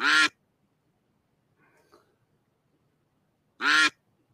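Two loud, harmonic duck quacks from a duck race game at the start of a race, one at the start and one near the end, with a faint, quieter rustle in the long gap between them. No one speaks.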